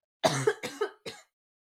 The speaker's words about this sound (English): Oh, no, I'm going to cough again.